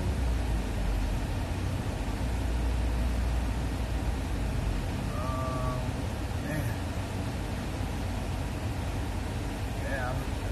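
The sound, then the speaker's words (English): A car's air conditioning blasts with a loud, steady rushing hiss that fills the whole stretch, a low engine rumble running underneath and a couple of faint, brief chirps midway and near the end. “I know it might sound like all weird because I got the AC on in the car. It's blasting because it's so hot.”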